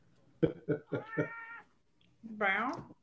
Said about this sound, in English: I hear meows. I know. I want to see the baby. Show me the baby. Every once in a while, this kitty gets clingy, and I don't know why, but that's fine.